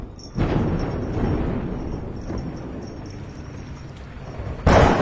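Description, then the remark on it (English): A deep, rolling thunder rumble from a nighttime storm, with lightning striking a rock, builds suddenly and growls on for several seconds, then a sharp, loud crack of thunder bursts in at the end. A faint, steady high-pitched whine runs faintly above it. “Just then as well, storm clouds start looming overhead, and we get a cut to nighttime scene.”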